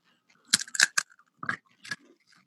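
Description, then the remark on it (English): Several crisp crunches of someone biting into and chewing gluten-free pretzels, arriving in quick uneven bursts with brief pauses between, loud with no talking. “You do it on our microphones? Yeah, let's do a little crunch.”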